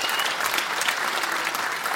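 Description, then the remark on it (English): An audience claps steadily, a dense, even wash of many hands with no pauses, holding at a consistent moderate loudness throughout, as a prize winner collects an album. “People clap while she gets the … album.”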